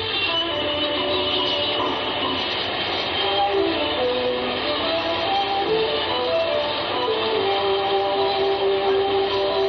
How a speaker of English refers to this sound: Listen to those slot machines. Those are slot machines you're hearing. You can hear them for blocks. Fantastic sound. Like the sound of a million bees.